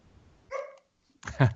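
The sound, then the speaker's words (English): A dog barks twice, a short higher yelp followed by a louder, fuller bark a moment later, with no talking around it. “There was the exclamation point right there with a woof.”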